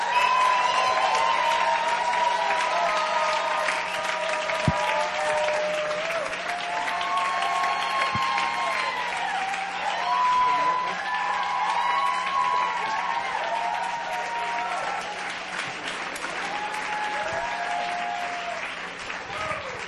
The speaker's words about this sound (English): All right. And let's put our hands together.